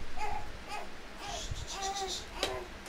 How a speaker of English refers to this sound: It's okay, guys. Oh, we got a noisy baby.